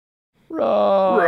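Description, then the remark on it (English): A loud, sustained roar from an animation of the Epic Play Game Nights themed playmat, bursting in abruptly after a brief silence, rich and growling throughout, with its pitch climbing slightly at the very end. No one speaks. “Roar.”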